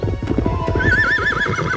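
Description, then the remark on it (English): A horse whinnies with a loud, wavering neigh while hooves clip-clop in a steady rhythm beneath it, clear, with no talking. “He does a few tries at naming his horse, and he sucks at it.”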